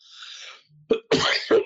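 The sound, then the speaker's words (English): A person with a head cold coughs: a breathy inhale, one sharp burst, then two harsh, rasping coughs in quick succession, with no talking around them. “Forgive the coughing.”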